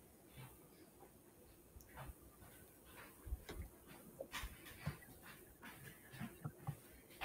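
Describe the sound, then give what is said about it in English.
A dog, Annie, stuck between doors and trapped in a room, whimpers and pants in quick, uneven breaths, with soft whining cries mixed in. The sounds are fairly quiet, with no talking. “She was stuck between the doors and she was crying and I didn't know my son accidentally trapped her in a room.”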